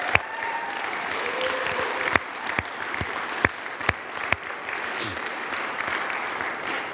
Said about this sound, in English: You know, we had other potato products and chips from various donors, and I want to thank all of them. Can we just give a big round of applause for all of those?